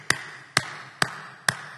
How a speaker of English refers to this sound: I can do it by clapping.